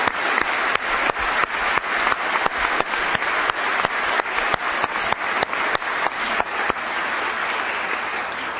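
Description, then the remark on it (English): An audience applauds steadily in appreciation of work done for the Woodrow Wilson School, a dense wash of many hands clapping with a few sharper claps cutting through, easing slightly toward the end. No one speaks. “And I think I can speak for all here in saying, Anne Marie, how much we appreciate and applaud what you're doing for the Woodrow Wilson School and the way in which you're doing it.”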